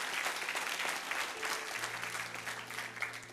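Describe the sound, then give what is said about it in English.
A church audience claps together for the Lord in sustained, dense applause, a steady wash of many hands with no voices rising above it, and a low hum running underneath. “Can you give an applause to the Lord?”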